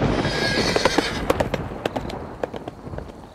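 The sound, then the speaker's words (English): A horse's hooves clip-clop in an uneven, galloping rhythm of sharp clatters over a low rumbling background, with a short, faint neigh near the start. “He's come to reclaim his horse.”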